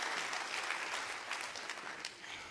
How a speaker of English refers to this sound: Can you get a witness with me to here tonight? Come on, clap your hands all over.